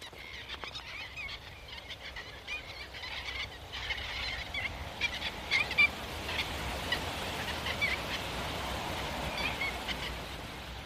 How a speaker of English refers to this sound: Their wings make a wonderful quiet whoosh as they pass over. They do, yeah. It's a sound you never tire of, yeah.